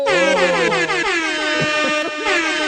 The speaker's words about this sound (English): Davis Mills is a Houston air horn, Texan. Air horn.